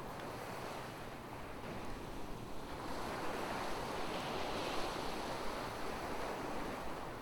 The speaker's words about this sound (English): Now you're in front of the ocean. You can hear the waves. You can't hear the birds anymore. The sound of the waves is covering everything. It's soothing.